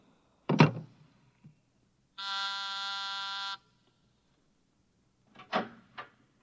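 An intercom buzzer sounds once, a steady, harsh, low-pitched buzz of about a second and a half. Short clattering knocks come before and after it, with no talking.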